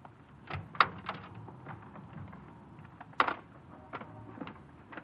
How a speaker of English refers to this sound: The car wasn't locked. I opened the door and...